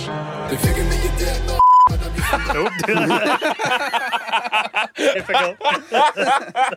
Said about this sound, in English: I'll just beep that out for the episode, but yeah.